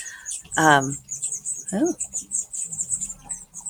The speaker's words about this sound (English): Well, some pretty major bird cheepage here. Wonder what that's about. You guys hear that? There's a nest up there with little birdies. Must be about to fledge. They're so loud.